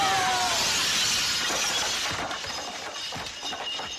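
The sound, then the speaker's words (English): A loud crash of window glass shattering as somebody jumps out of a second-floor window, followed by bright tinkling shards scattering and settling for a few seconds. No voices. “Yeah, somebody jumping out of a second floor window. Couldn't find a good bell Foley.”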